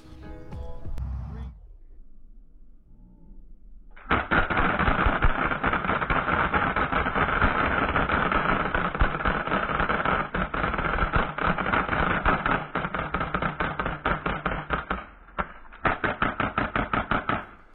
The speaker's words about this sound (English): I just like seeing those stripper clips coming off those guns